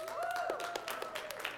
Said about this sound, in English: All right, I noticed that most of the people clapping are not preteens, and that's fine.